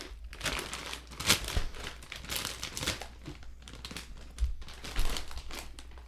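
A crinkly bag of New Orleans kettle style potato chips is handled for several seconds, producing bursts of sharp, crackling plastic rustles that rise and fall irregularly, with a few louder crunches along the way.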